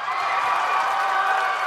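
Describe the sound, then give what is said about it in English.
A loud, steady crowd roar from a sports event, a dense wash of cheering voices that holds at a constant level without pauses or distinct words. “The roar of the crowd, the adoring fans, the superhuman physical feats.”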